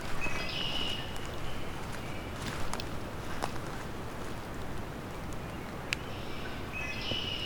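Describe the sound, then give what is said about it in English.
A red-winged blackbird calls twice, a buzzy, trilling song at the start and again near the end, moderately clear over steady outdoor background noise with a few soft clicks and knocks. “Red-winged blackbird.”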